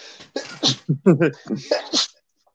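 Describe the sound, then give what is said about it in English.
A loud sneeze tangled up with a run of strained vocal noises and short bursts of breath, ending abruptly in quiet. “Hang on, I'm gonna sneeze.”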